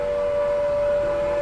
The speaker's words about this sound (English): The sirens you hear are ringing to warn people to evacuate the city as the Martians approach.